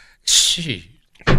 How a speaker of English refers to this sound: Gee. That didn't happen on purpose either. Sounded funny though. I didn't punch anything. My chair hit the gimmick.